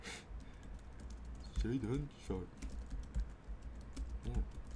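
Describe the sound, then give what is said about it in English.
Rapid clicking of keys on a computer keyboard runs throughout, moderately loud, with a brief stretch of talking in the middle over the steady typing. “You might hear some keyboard typing.”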